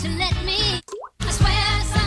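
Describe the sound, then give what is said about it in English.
A single cartoonish water drip sound effect from a soundboard, a quick upward-bending plop, sounds alone in a brief pause, with loud, dense tonal sound filling the moments before and after it. “That's the Dripping Springs noise.”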